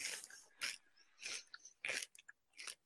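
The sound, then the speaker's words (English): Crunchy chewing of chips with mild salsa, the first scoop from a new container, five or six loud, crisp crunches in a steady rhythm with brief pauses between bites, no talking. “Yes, you probably can hear me chewing.”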